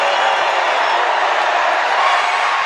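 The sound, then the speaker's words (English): A large arena crowd roars in a loud, steady wall of cheering and shouting as consecutive free throws are missed, holding at full volume for a few seconds without any break. “We'll let the crowd tell you what happens.”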